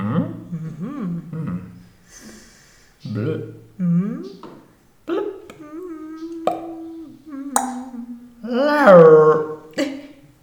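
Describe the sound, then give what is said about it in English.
A person imitates a wolf howl, giving several drawn-out vocal wails with sliding pitch, one held for a couple of seconds and a louder rising cry near the end. “You sound like a wolf.”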